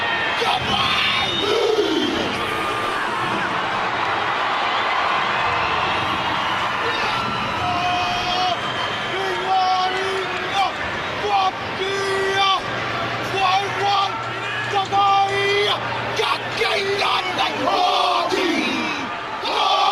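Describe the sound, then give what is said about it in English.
A group of men loudly shout a rhythmic haka war chant in unison in their native tongue, sticking out their tongues, with sharp barked calls and whoops, backed by a roaring stadium crowd at an NFL game throughout. “they chant and they're sticking out their tongues and chanting in this, you know, native tongue here”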